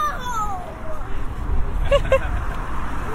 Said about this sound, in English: Okay, now I'm on the bridge properly. It's actually noisier than I imagined because there's just a constant stream of traffic. It'd be interesting to be on here when there's no cars and just